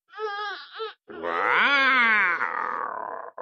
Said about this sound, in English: They heard sounds like that, which sounded like a mountain lion or a tiger. And it scared them, but they couldn't see anything. They couldn't see a mountain lion or a tiger or anything that looked scary or could make that noise.